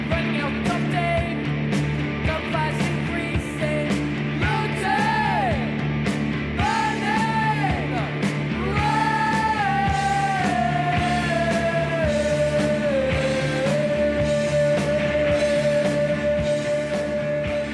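A raw, loud 1977 punk rock song built on one chord plays throughout, with a screamed, yelling lead vocal over dense, driving guitars and steady pounding drums, full.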